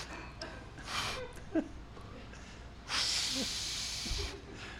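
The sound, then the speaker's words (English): Nasal sniffing: a short breathy sniff, then a longer, drawn-out inhale through the nose, smelling the cork of a 1986 Sauvignon wine, over a quiet background. “Would you like to sniff the cork, or?”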